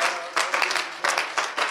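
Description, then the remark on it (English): An audience at a church service claps hands together to the Lord in a dense, steady burst of applause, with brief surges in intensity, fairly loud with no clear talk over it. “Can we clap our hands to the Lord right now?”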